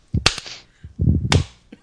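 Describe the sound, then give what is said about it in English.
Two loud, sharp hand claps about a second apart, with softer muffled thumps and murmuring sounds filling the gap between them and a faint tap at the end. “Oh man, you clapping?”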